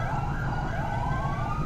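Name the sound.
fire engine siren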